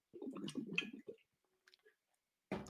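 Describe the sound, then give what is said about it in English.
A slurping sip of water lasting about a second, followed by a few soft wet clicks and a swallow in near silence, then another noisy burst at the end. “Take a sip of water.”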